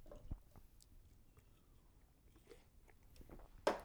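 Someone takes a quiet sip of water: soft wet mouth clicks and a gentle swallow, ending in one sharper smack of the lips, with no talking.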